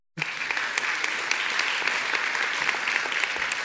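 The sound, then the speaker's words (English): An audience at Peninsula Covenant Church applauds a guest speaker, a dense wash of many hands clapping that starts abruptly and holds at an even, fairly loud level for several seconds without fading. “I want you just to give a round of applause to our guest speaker”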